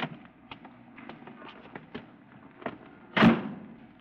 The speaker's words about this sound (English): It was getting dark by the time I arrived. I waited for about 10 minutes until Christine Matson's cab pulled up at the curb and she opened the door for me.